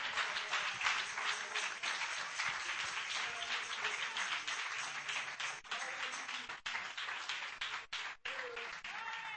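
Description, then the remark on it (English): An audience claps steadily to praise the Lord for several seconds, a dense, continuous wash of many hands with faint voices mixed underneath, holding a fairly even loudness throughout. “Clap your hands and praise the Lord right now.”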